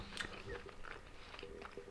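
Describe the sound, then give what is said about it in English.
Wet, crunchy chewing right up against the microphone, a steady run of bites and mouth sounds with no talking, loud and intimate. “I made hot sauce a few days ago for a video, so I'm chewing.”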